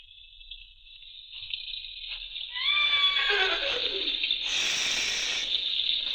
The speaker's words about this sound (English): Be quiet. Nice horse. Nice horse. Oh, shut up, horse.